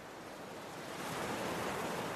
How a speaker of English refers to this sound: And mostly calm ocean waters greet you again. For the rest of you, you feel and you hear that you are out of the storm and in calm waters.